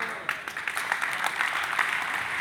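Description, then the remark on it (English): An audience claps and sings, a dense, steady patter of many hands, with crowd voices blending into the sustained noise throughout. “You're clapping and singing the house right now.”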